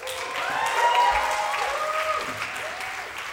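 An audience cheers and applauds steadily, a dense wash of clapping with whoops and shouts riding on top, sustained at a fairly loud level for a few seconds.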